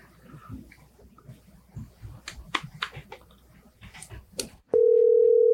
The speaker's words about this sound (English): It is exciting hearing the phone ring.